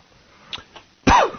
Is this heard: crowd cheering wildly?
no